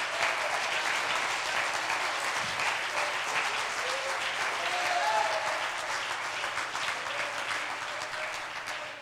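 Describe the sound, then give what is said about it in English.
An audience claps their hands to praise God in steady, dense applause that holds at an even loudness for several seconds before easing off slightly at the end, with a faint murmur of voices underneath. “I'll clap your hands and praise God.”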